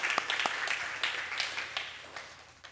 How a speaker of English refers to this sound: So give yourselves a round of applause for that restoration church.